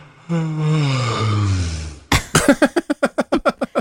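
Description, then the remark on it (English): A long, drawn-out yawn lasting nearly two seconds, its voiced tone sliding steadily downward in pitch. It is followed by a quick run of about a dozen short, sharp, rhythmic bursts. “It's a really awkward yawn.”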